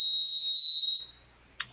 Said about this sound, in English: Blow the whistle.